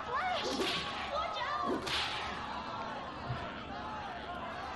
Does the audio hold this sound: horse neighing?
no